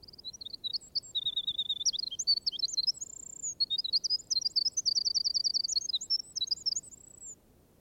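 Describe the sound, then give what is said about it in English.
A small songbird in woods pours out a continuous, bright, high-pitched, loud song of rapid trills and sweet whistled notes over a low rustling background. “Indeed, his song is very strong for so small a bird, and unites in a remarkable degree brilliancy and plaintiveness.”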